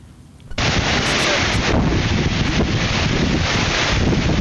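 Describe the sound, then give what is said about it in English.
A strong directional storm wind roars and buffets the microphone, breaking in abruptly after a quiet half-second and then blasting steadily as a dense, loud rush across all pitches with no voices. “This is a directional storm.”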